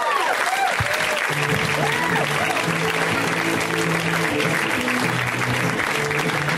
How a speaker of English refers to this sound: Usually that gets like a much larger response. That was my big closer. So just applaud and we'll edit it so it looks like I killed it. Thanks, guys.